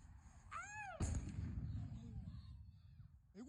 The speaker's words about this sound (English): Oh my God. Is that a firework?